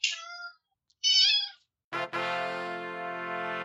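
A cat meows three times: two short high-pitched mews, then a longer, drawn-out, louder yowl. No talking.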